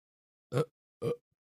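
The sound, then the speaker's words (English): Two short burps in quick succession, each a brief throaty gulp with a raspy edge, separated by a half-second pause in otherwise silent surroundings. “That was a bad burp.”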